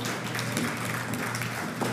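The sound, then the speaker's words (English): An audience claps together, a dense, steady wash of many hands at an even moderate level for a couple of seconds, with no voices over it. “And that's worth a clap or an amen or something right there.”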